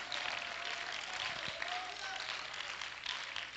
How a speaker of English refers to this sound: Oh, clap your hands and let's praise the Lord together.